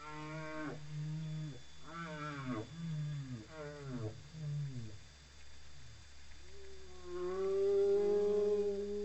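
Whale song: a sequence of low, mournful, wavering calls, several in close succession followed by a longer rising moan, fairly loud and clear with no one speaking.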